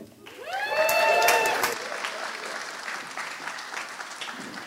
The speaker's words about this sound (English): So, if I give you instructions, now each time someone comes up, why don't you give them a clap when they finish to welcome the next person up